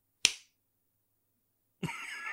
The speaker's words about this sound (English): I clapped, sorry, yeah. I clapped. That it was... it was just one single clap.